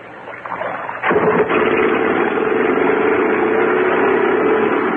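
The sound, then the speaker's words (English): A motorboat engine catches after a quiet second and keeps running loud and steady, a continuous droning hum that holds at an even level to the end, with no voices, as the boat takes passengers out to a yacht. “Boat rides easy.”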